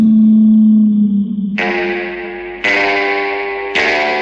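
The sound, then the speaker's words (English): Film score music: a low, steady flute tone for the bad guy played by Lee Van Cleef gives way to three loud, twangy Fender Stratocaster electric guitar chords. Each chord is struck sharply and left ringing with a bright, reverberant, slightly distorted sustain. “You hear the low flute for the bad guy for Lee Van Cleef, and it gets punctuated by the Fender Stratocaster.”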